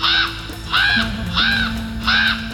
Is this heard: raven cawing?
yes